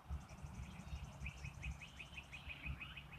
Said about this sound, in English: So there's a lot of bird activity going on this morning. They're all waking up at the same time.